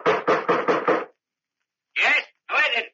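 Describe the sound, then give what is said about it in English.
Two men bang an old bronze door knocker on the front door of an ancient house at dusk, five times in quick succession, loud, then after a short pause twice more, slower and more spaced. “A few moments later, they banged the old bronze knocker on the front door of the ancient house.”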